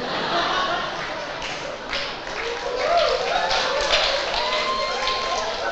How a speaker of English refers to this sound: You shouldn't be clapping.